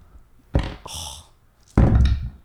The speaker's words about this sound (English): The fuck? Did you just roll all your dice? Can we do it again?